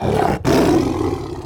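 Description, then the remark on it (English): A tiger gives a deep, loud, rumbling roar with a rough low-pitched growling texture that holds steady for over a second after a brief breath-like gap. “So, here's a short lesson on how to speak tiger. Here's how you say hello.”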